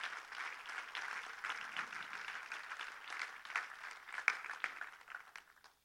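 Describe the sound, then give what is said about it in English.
A large church audience applauds steadily for several seconds to thank church members and staff who helped this week, a dense, even wash of many hands clapping, with a few sharper claps near the end before it fades out. “And if you're a church member here and you helped this week, which so many of you did, and our staff that worked a tremendous amount of hours, you too, will you please stand up so we can give you a round of applause?”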